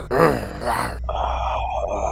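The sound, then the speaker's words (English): A person playing a role-playing game gives a short, rough, throaty growl in reply to approaching strangers, lasting about a second, two swelling pushes of voice, followed by a steady, thin higher-pitched tone that carries on to the end. “I growl back.”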